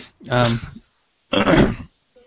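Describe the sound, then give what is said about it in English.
A muffled throat clearing with a voiced rumble, then after a brief pause a stifled, breathy cough-like burst as a person tries not to cough. Two short sounds, held back and fairly loud, with no talking. “I'm trying not to cough.”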